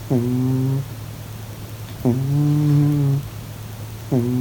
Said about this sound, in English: He's also sent us an attachment of his cheeky cat, Delboy, snoring.